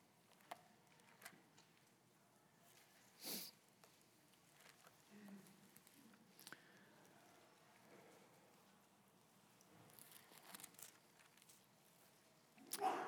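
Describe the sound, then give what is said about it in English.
A single sharp sneeze bursts out partway through, short and moderately loud, against a quiet background with faint rustling and a few soft taps. “God bless you.”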